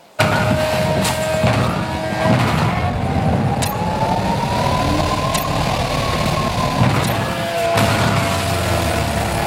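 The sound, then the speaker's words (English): A video game car roars through a stunt jump, its engine droning loudly with a pitch that swells and dips, broken by a few sharp thuds like landings. No one speaks. “So now a video of a crazy stunt I realized for the occasion.”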